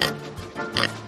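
Two short, nasal pig oinks, fairly loud, one right at the start and a second a moment later, with a faint low rumble between them and no talking.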